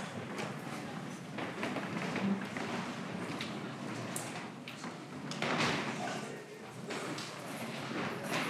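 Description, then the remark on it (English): A room full of chairs scraping and shuffling across the floor at once as a church audience puts its chairs back into rows before communion, a continuous clatter with occasional knocks and faint murmuring voices underneath. “So real quick, I invite you just to put your chairs back to where they were, get back in rows, and I'll give us some instruction.”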